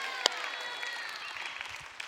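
A short burst of crowd applause, many hands clapping at a moderate distance in a steady patter, with one sharp clap standing out near the start.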